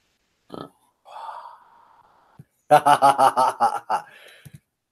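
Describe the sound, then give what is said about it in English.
A drawn-out, croaky burp lasting about a second, fairly loud, followed by a burst of rapid, pulsing laughter. “That burp felt so good.”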